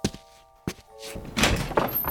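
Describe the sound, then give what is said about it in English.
A heavy door in a courthouse office thuds twice in quick succession, then swings open with a long, rumbling creak that grows louder. “You never know who might pop through the door.”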